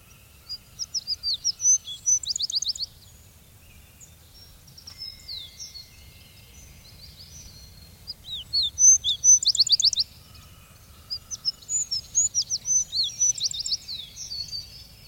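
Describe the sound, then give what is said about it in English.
A wood sparrow sings clear, rapid trilling phrases high in pitch, three bursts separated by short pauses, heard alone over a faint low rumble of outdoor background, in July in a remote clearing covered with heath and fern, with a chestnut and an oak here and there. “In a remote clearing, covered with heath and fern, or here and there a chestnut and an oak, I go to hear in July the wood sparrow.”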